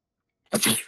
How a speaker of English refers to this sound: Damn, that was the worst fucking sneeze I've ever had in my life.